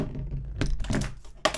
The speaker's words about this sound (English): Okay, I'm going to roll this. I'm going to put my keyboard down and roll it on the table so you can hear it.